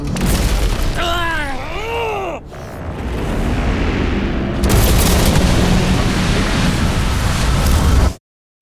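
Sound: spaceship crash impact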